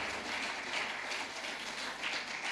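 crowd, audience clapping

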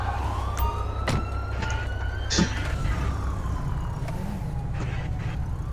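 vehicle, police car siren wailing

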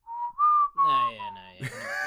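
human whistling a tune

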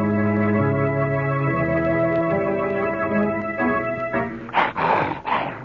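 animal, dog growling

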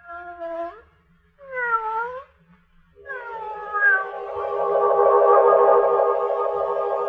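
animal, cat meowing

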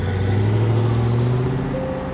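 vehicle, car driving away

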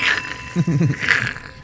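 signal or alarm, bell ringing

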